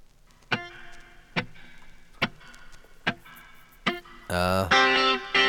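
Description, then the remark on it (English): Electric guitar drenched in heavy reverb, played from side B of a record: five evenly spaced, sharp plucked chords ring out with long echoing tails, then a loud, sustained bending note and a dense distorted burst close it out. “Sweet reverb.”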